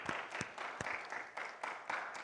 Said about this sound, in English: Yeah, we can clap for the elders.